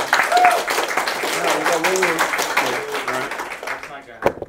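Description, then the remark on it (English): A crowd claps steadily for about four seconds, dense and fairly loud, with some voices calling out over it; the clapping thins and fades near the end, broken by one sharp clap. The applause is for Kirby. “Round of applause for Kirby.”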